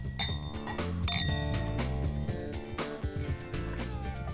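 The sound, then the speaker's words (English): Wine glasses clink together in a toast at the close of the KQED show Check Please Bay Area, several bright ringing taps, heard over a steady background of music. “Cheers. Cheers. Cheers.”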